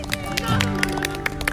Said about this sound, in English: Hasn't she done well? Can we just give her a clap?